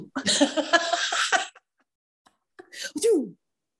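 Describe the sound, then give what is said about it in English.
A voice imitates a loud, raspy coughing fit: a long burst of rough, breathy hacking, a short pause, then a final strained cough that trails into a falling groan. “Coughing.”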